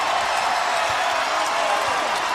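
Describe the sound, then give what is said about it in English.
A basketball arena crowd cheers in a steady, loud, continuous roar, a dense wash of voices with no break, and no single voice stands out, as the USF Bulls dribble out the final seconds of a 75-51 win. “Listen to this crowd.”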